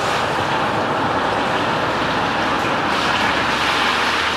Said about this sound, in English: Oh, that car's coming awfully fast through this top. It is.